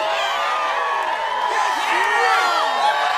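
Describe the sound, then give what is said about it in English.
A loud crowd of teenagers at a house party cheers and whoops continuously for a rock star, many excited voices overlapping in a dense, sustained roar with rising shouts and hollers throughout. “And they're all cheering him on because they're so excited that a rock star is at the house.”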